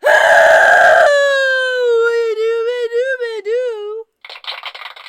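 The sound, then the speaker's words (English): A loud, harsh scream bursts out at full force, then stretches into a long, wavering wail that slowly fades, ending with a short, scratchy vocal burst after a brief pause. “I can deafen people with my deafening scream.”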